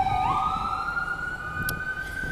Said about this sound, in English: I'm waiting till the ambulance passes.